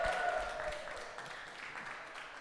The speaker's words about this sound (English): Can someone give a holler and a clap for our brother?